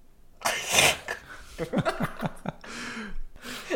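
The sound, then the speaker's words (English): A sharp, breathy cough bursts out in the middle of a voice doing a growly Scooby-Doo imitation, followed by a few more rough, noisy exhalations. “I, like, coughed in the middle of it.”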